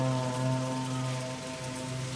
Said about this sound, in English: So Makgeolli has a certain place culturally about when to drink it, and it's always when it starts to rain.